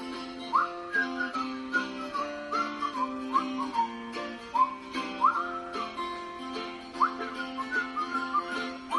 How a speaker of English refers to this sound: Time for whistling again. Come on, you can do it.